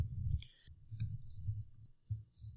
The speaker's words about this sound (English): Let's see here. Well, just typing in 5'6" and ideal weight.